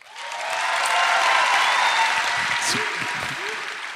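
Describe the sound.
A crowd, asked to clap if they think a man will be a good dad, breaks into sustained applause, dense and steady for several seconds, with a few scattered voices and whoops rising over the clapping as it begins to thin toward the end.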